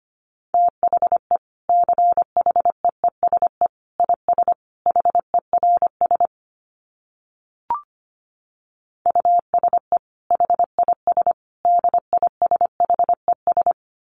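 Morse code at a brisk 25 words per minute: one steady mid-pitched beep keyed on and off in quick dots and dashes, in two bursts separated by a pause with a faint click.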